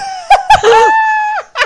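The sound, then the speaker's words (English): A chair creaks, groans and breaks as someone leans back in it: a couple of sharp cracking pops, then a long strained squeal that bends down in pitch, and a final short crack. “Oh, I think I just broke the chair.”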